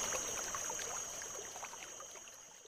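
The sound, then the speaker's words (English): A brook babbles and trickles steadily while crickets keep up a constant, high, unbroken chirping trill above the water, with no voices. “Crickets at the Creek: Babbling Brook & Cricket Soundscape”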